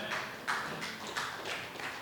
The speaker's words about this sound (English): That was a sad clap for Jesus, man.